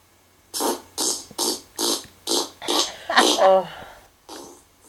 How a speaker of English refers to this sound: So now we're going to share this treat with you. It's a special podcast treat, farting the alphabet, of course.